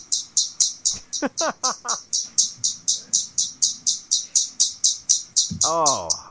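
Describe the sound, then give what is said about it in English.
Birds of many species, from Florida, chirp nonstop in a fast, steady series of high, bright tweets, about three per second, with a few lower squawking calls breaking in near the start and end. “Saying such beautiful things, but well, I couldn't hear it over the incessant chirping.”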